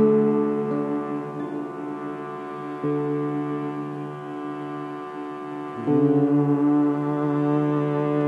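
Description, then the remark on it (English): Meditative humming of a single note: a steady, low hummed tone held continuously with rich harmonics, shifting pitch slightly a few times, including a noticeable lift near the end, with no words spoken. “Feel that the vibration of the humming helps to open even more fully your spiritual heart.”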